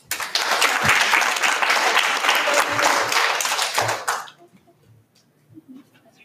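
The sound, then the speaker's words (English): Loud, dense applause from an audience, steady clapping for about four seconds before it cuts off sharply, leaving near silence with a few faint low thumps. “Give a round of applause for Jeff.”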